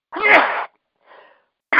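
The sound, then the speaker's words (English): A loud sneeze bursts out sharply, followed by a softer breathy exhale and then the start of another noisy burst, with no talking in between. “Bless you.”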